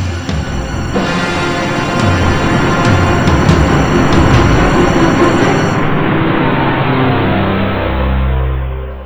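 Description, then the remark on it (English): A spaceship's main engines roar to life in a loud, steady, rumbling blast topped with hiss; past the midpoint the hiss drops away, leaving a deep sustained rumble. No voices. “We launch in 3, 2, 1. Main engines go!”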